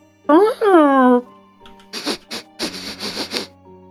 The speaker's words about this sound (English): Some kind of creature is sniffing around the street. You hear this kind of soft chirping call.